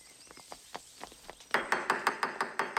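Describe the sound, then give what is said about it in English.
Knocking upstairs: a run of faint, irregular taps, then a sudden louder burst of about eight quick, evenly spaced knocks in a steady rhythm, with no voices. “Knocking! Knocking! Knocking! Upstairs!”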